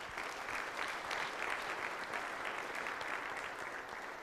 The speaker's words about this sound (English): But she is going to the best college in the world, Appalachian State University. Go Nears. Yes. Some applause for that. I hear that.